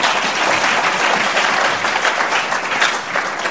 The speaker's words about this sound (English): All right, a round of applause.